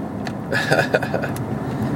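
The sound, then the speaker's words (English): A steady low road rumble from a car driving in traffic, with a few brief brighter swishes passing over the continuous engine and tire noise. “getting into the next half of my day here, so on the road, getting into this beautiful traffic.”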